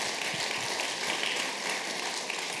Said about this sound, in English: That, come on, why don't we clap our hands for the guys that are here today from Teen Challenge.